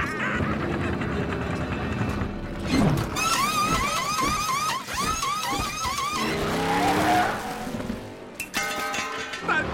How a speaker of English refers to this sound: That was the fastest pit stop I've ever seen. It was a great stop, but he's still got to beat that pace car out.